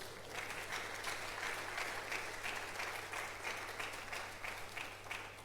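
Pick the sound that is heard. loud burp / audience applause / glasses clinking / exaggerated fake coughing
audience applause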